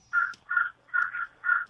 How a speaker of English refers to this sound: Well, that, I mean, what do you own? Do you own an exotic bird? Is that what I'm hearing, or is that a computer problem on my end?